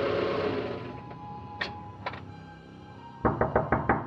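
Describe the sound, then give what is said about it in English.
Knocking on a farmhouse door: two separate raps a moment apart, then a quick, insistent burst of about five or six knocks, fairly loud over a quiet background hum. “And no one answered the door when he knocked.”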